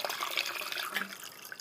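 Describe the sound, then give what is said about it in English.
Water runs steadily into a water bottle being refilled for a couple of seconds, a broad hissing splash with a slight rising tone as it fills. No one speaks. “Oh, fuck, I'm sorry, I'm gonna fucking refill my water bottle.”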